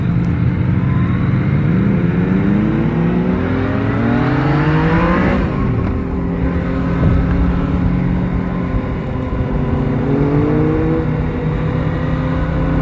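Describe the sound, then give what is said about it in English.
A motorcycle engine with a stock exhaust revs steadily, loud, its pitch sweeping up and down through several throttle blips with a rough, throaty exhaust note and no voices over it. “Okay, so not too bad for a stock exhaust.”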